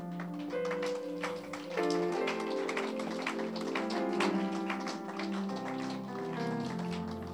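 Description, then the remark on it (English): An audience claps hands in a steady rhythm, the sharp claps standing out over sustained keyboard-like music that fills the background throughout. No one speaks. “God bless your hands. The hands you are using to clap.”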